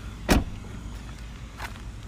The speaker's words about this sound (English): The sound of you opening the car door for your lady.